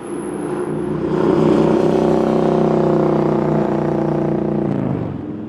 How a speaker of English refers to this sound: The street conversations of often maligned partygoers pale in comparison to the ear assault of a mufferless motorcycle.